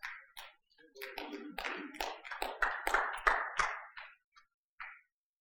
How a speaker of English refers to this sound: I didn't expect to get too many claps on that one.